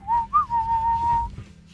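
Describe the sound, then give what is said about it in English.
Someone whistles a short melodic phrase of a song: a clear tone that briefly lifts in pitch, then holds one long steady note before stopping, over a low background rumble. “It was a cappella and whistling.”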